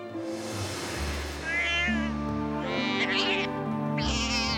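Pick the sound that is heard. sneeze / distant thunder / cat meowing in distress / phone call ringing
cat meowing in distress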